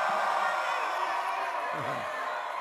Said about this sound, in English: Some of them are shouting, yeah. Yeah.